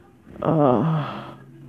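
heavy breathing

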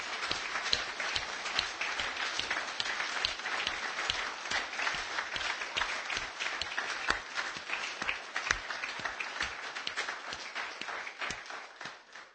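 audience applauding and clapping

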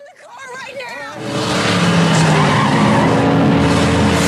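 cars skidding

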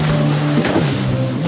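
motorboat engine on water

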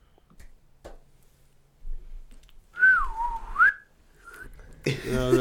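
whistle blown

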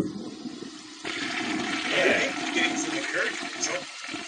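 toilet flushing

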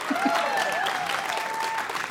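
audience applause

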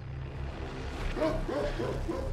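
dogs barking

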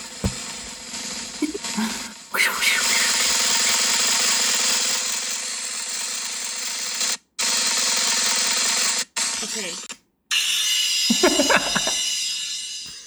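washing machine running

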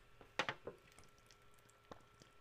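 drinking water

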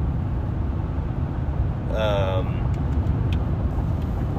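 truck driving

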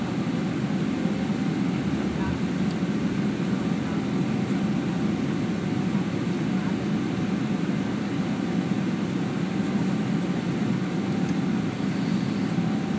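airplane engine noise

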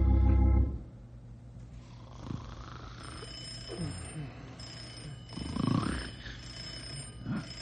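telephone ringing

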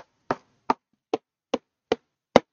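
knocking

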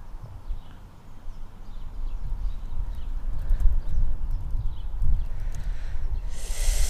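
keyboard typing

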